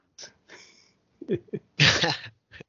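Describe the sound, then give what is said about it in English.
Two short, breathy nasal sniffs from someone who is sick, then a few throaty sounds and a loud, forceful sneeze-like burst, with one more quick sniff at the end. No one speaks. “I'm just gonna please ignore the sniffing.”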